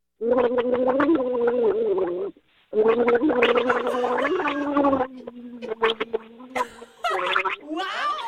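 Someone gargles water while carrying the melody of Silent Night, the bubbly throat sound rising and falling in pitch through several sustained phrases with a brief pause, ending in choppier gurgles.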